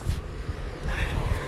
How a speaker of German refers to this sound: Oh mein Gott, vielleicht hört ihr gerade den Wind.